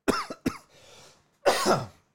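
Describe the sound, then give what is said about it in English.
A short fit of coughing by a person holding a shot of liquor: two quick sharp coughs, a breathy wheezing pause, then one longer, harsher cough. No talking. “You can't cough with a shot in your hand. You fucking spill it everywhere.”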